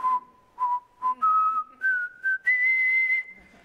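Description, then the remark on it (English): A person whistles a short melody, the clear tone stepping upward through a series of notes, some brief and detached, others held longer, fairly loud with no talking. “So I imagine, and I was just thinking about this week, here's this angel sitting up on top, arms crossed, dangling his feet, whistling.”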